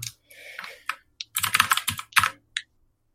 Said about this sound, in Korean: 아유, 오랜만에 청축 치니까 기분이 묘하네. 맨날 또 샀어? 아니, 집에 냅두고 있던 그 레이저 키보드를 가져왔거든. 아. 사실 처음은 레이저. 아니고 녹축인데.